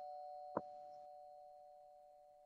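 A doorbell rings once with a quick sharp strike, followed by a steady ringing tone that fades slowly over a couple of seconds. It is fairly quiet, and no one speaks.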